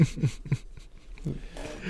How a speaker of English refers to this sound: It's one of the dogs. Got his ear stuck in the door.